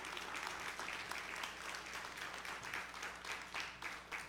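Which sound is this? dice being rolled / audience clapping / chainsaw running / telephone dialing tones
audience clapping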